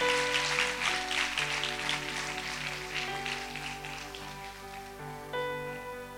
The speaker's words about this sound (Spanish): ¿Cuántos le dan un fuerte aplauso? Se ponen en pie, adoración.